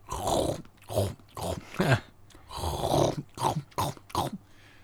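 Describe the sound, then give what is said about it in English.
A voice imitates a couple of raccoons eating dog food outside a tent at night, making a rhythmic run of rough chomping grunts and low growly snorts, about nine quick bursts with brief gaps, and no actual words. “There's a couple of raccoons eating the dog's food.”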